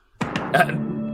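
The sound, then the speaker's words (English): A short, dramatic news-style stinger: a few punchy percussive hits in quick succession, then a loud sustained tonal chord that rings out for about a second, with no talking. “Wait, let me play the breaking news sound cue here.”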